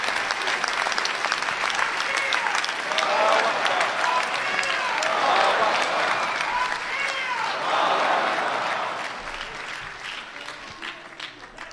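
Sustained applause from an audience for a man's work that day, dense clapping that holds steady for most of the stretch before thinning out slightly toward the end, with faint crowd murmur mixed in.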